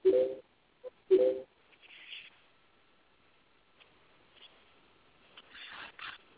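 Two short, loud telephone dialing tone bursts about a second apart, with the narrow, tinny quality of a phone line, followed by near silence and faint scattered rustling.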